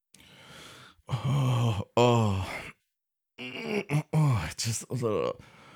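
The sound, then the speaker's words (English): Someone breathes hard, a breathy exhale followed by several loud, voiced sighs and groaning gasps with short pauses between, like a winded person catching their breath after exercise. “When she had finished, and she could hear him breathing, as if he had exercised.”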